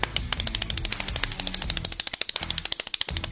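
Extremely rapid hand clapping, a dense, steady stream of sharp claps so fast they almost blur together like a rattle, sounding alone and fairly loud without any talking.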